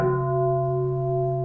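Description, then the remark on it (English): A large bowl-shaped bell standing beside a plant, in a center on the fourth floor of a commercial building, is struck once, then rings on with a deep, steady hum and bright layered overtones that barely fade. It is fairly loud, with no voices. “And what's that thing on by the plant, that big bowl? It's a bell.”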